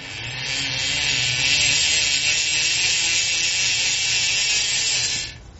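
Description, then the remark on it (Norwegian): A bicycle cassette ratchets steadily as the chain is turned backward while something is sprayed onto the cassette, a fast, even buzz of clicks blended with a bright hiss that runs about five seconds before cutting off. No one speaks. “Så sprayer jeg rett og slett litt på kassetten her, mens jeg vrir kjede bakover.”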